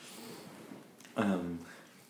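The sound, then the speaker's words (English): A single loud creak with a slightly falling pitch lasts about half a second as a reclining chair in a living room is tilted back a little, after a stretch of quiet room noise. “I'm going to recline my chair. Just a little bit.”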